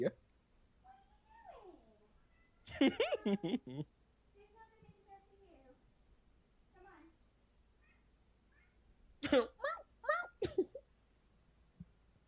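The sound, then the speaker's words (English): A female cat meows loudly and insistently in a kitchen, with two clusters of sharp, drawn-out cries separated by softer, fainter mews in between. “My other cat is in the kitchen screaming, and I don't know why.”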